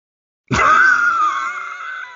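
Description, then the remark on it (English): After a brief silence, a person lets out a loud, sustained roaring yell that holds steady for well over a second, a vocal imitation of a bear roaring out a tornado. “It's bears that yell tornadoes.”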